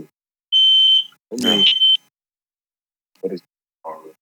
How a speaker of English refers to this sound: Oh, sound like they got it. Yeah. All right. Nobody burned down. Good, good, good, good, good. Sound like a fire alarm.